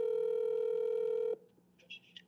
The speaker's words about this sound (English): it's pretty rare to call someone once and not call again, even if you know that after two or three dial tones, you're just going to get their voicemail